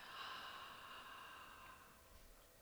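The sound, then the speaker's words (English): A slow, deep exhale through the mouth during a guided breathing exercise, counted to six: a soft steady breathy rush that gradually tapers off over a couple of seconds. Quiet, with no talking. “Breathing out, counting to six.”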